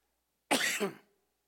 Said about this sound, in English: My cold's gone, but my cough's still lingering a little bit, and I rebuke it every day.